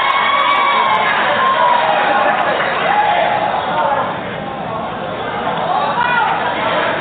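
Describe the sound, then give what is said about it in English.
An arena crowd in Williamson cheers wildly at a Rutgers home basketball game after a shot from the half-court stripe is banked off the glass, in a dense, sustained roar of shouts and whoops, staying loud for the whole stretch with only a slight dip midway before surging again. “Mount Evidence took it from the half-court stripe, laid it off the glass, and they're losing their minds here in Williamson.”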